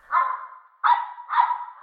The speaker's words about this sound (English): cut this dog's mic